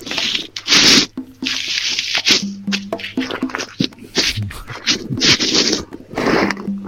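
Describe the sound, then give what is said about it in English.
A phone being handled and repositioned during a call: loud, harsh rubbing and scraping bursts against the microphone, irregular and continuous for several seconds, with brief thumps and no voices. “That's the longest, like, hold on a second, I gotta situate this phone I've ever heard.”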